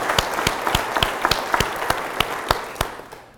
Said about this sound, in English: has been the lead fundraiser on this project, and she deserves a big round of applause.